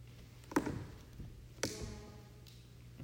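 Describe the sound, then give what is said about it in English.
Two distinct wooden thuds about a second apart, footsteps on old creaking floorboards by a door, each followed by a faint ringing creak, with a softer knock after, over a low steady hum. “But the boards are creaking over there by that door.”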